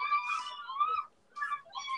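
Faint, high-pitched screaming from outside, heard through an open window, in wavering, drawn-out cries, broken into a few bursts with a brief pause in the middle. No one speaks over it.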